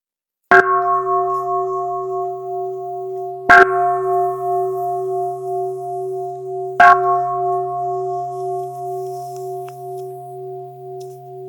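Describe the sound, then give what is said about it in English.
A meditation bell is struck three times at steady intervals to conclude a Buddhist gathering, each strike blooming into a long, resonant hum whose overlapping tones sustain and slowly fade, with no voices present. “May the sound of this bell ring throughout the universe, awakening all beings to joy and equanimity.”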